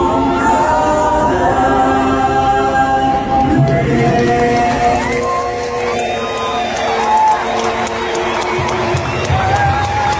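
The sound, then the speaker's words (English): A big Atlanta Braves home crowd at Truist Park cheers and whoops in a steady, loud roar on July 6th as a family band performs the national anthem, with long held sung notes rising above the noise and scattered clapping throughout. “… got to perform the national anthem at Truist Park in front of an Atlanta Braves home crowd July 6th.”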